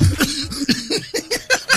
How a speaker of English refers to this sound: I'm not taking this new pack into the weekend. You giving me a cough I can't get rid of.